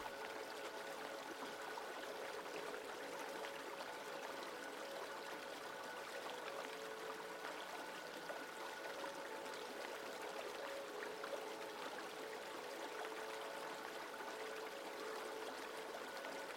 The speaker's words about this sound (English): Upriver, the water rapids froth around some massive boulders.